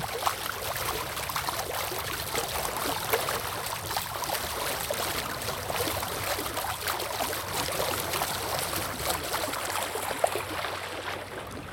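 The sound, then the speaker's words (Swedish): Water laps and gurgles steadily against a sailboat's bow, a continuous sloshing with small irregular splashes and a faint rush of wind behind it; no engines are running and no voices are present. “Inga motorer, bara vinden och vågornas kluckande ut med bogen här.”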